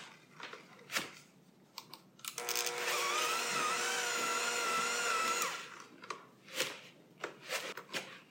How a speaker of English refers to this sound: And then we're going to use our mixer, hand mixer. You could use a stand mixer too, but I'm using my hand mixer. And I'm just going to, it's called creaming the butter and the sugar, and I'm going to make it nice and smooth and get it all together.